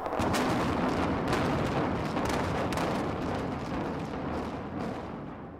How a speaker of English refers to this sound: The Stardust was demolished in 2007 in true Las Vegas style, with fireworks and a countdown. It was even broadcast on live TV.